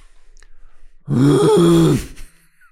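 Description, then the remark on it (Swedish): A person imitates a moose call with a single long, low, moaning vocal bellow lasting about a second, loud and sustained with a slightly wavering pitch, then trailing off. “Hur låter en älg?”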